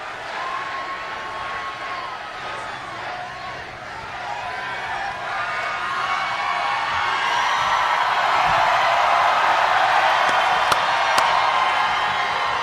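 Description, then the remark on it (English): A large overflow crowd outside an arena roars and cheers, the noise swelling louder midway and staying loud, with a few sharp whoops or whistles rising above the steady wash of voices. “he came out to the overflow crowd and spoke to the overflow crowd as well.”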